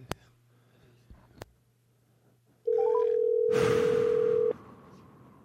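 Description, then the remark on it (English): A telephone rings on an outgoing call to a grandmother: one loud, steady electronic ringback tone lasting about two seconds, preceded by a couple of faint clicks over a low hum, with hissy noise rising partway through. “And then answer the phone.”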